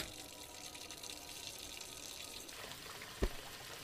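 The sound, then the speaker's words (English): Water steadily runs into a container with a continuous splashing hiss, raising the water level, then a single sharp plop near the end as a rock drops in. No voices. “You put the rock in the container of water, which displaces the water and raises the water level, allowing them to access the floating food.”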